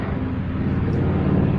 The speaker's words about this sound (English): Airplane, hold on.